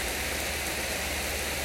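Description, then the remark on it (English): Steady rain pours down in a dense, even hiss, continuous with no pauses, faint low rumble underneath and no voices present. “It's amazing to watch as the rain just falls down upon the earth.”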